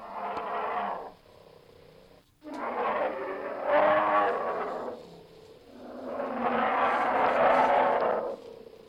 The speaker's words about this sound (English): Okay, that is a bear.